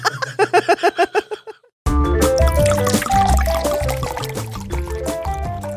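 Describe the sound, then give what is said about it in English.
Sparkling Moscato wine glugs out of a bottle into a glass in quick, rhythmic pulses, clear, then a brief pause before upbeat music starts playing. “I've cracked open a bottle of Moscato.”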